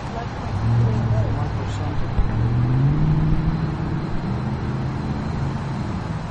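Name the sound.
car driving by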